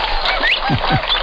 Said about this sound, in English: Very nice. The brewer's blackbird is absolutely correct.